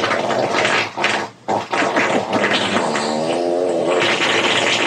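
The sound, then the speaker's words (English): A long, loud, drawn-out fart with a buzzing, wavering pitch that ripples and sputters, pausing briefly near the start before carrying on for several seconds with no talking. “That's one fart.”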